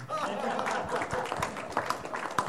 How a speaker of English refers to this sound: Some of you may have heard of VoiceView. You can applaud.